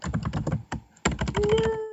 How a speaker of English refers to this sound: Just hear you, like, it just sounds like you're just pounding on the keyboard. I've actually been told I have a very strong type.